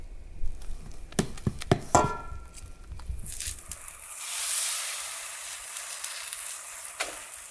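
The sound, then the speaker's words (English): A few sharp clinks and taps of cookware, then a steady, bright crackling hiss as mesquite flour pancake batter sizzles on a hot griddle, swelling briefly before settling into a softer fizz. “Okay, first pancake is going on.”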